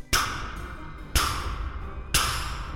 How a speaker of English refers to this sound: And just then I heard a knock at the front door.